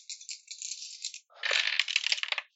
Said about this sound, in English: I'll roll three dice.